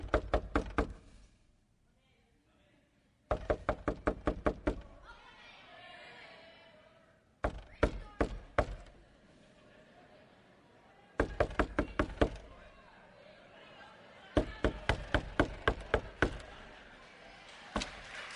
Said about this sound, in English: Jesus just stands knocking and knocking and knocking at his door